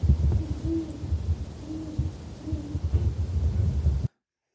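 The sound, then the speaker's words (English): A great horned owl hoots in a slow series of about four deep, soft calls, spaced a second or so apart over a low, rumbling background, with no one speaking. “mid-late February, when we start getting those warm-ups, those skunks will emerge and become more readily available for the great horned owl.”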